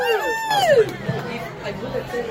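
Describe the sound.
Crowd chatter fills the Pig and Whistle, a rugby pub on West 36th Street in Midtown Manhattan, a steady babble of overlapping voices, opened by one loud voice whose pitch slides downward before blending back into the hubbub.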